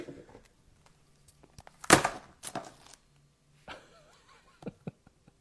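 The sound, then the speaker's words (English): A sharp clatter as keys knock a phone off its stand: two loud impacts close together, then a softer metallic rattle and a few light clicks as things settle. No one speaks. “My keys, yes, the keys that just knocked the phone off the stand.”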